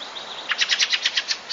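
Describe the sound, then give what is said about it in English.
A thin, high bird note gives way to a quick run of about nine harsh, chattering chack calls from a fieldfare, evenly spaced, with no voices. “It was a field fare.”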